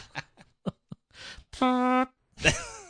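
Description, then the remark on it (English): Someone blows a series of mouth-made fart noises: a few short sputters, then a long buzzy raspberry and a final drooping blurt, with no talking. “I could just make fart noises. Hey, that's pretty good.”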